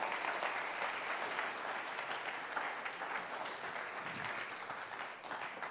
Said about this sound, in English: How many of you enjoyed that meal tonight? Let's give the dining hall a round of applause, okay?